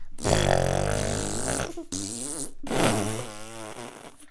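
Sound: voice imitating a fart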